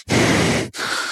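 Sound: imitated heavy labored breathing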